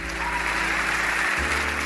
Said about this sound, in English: can we get some like wild, raucous applause?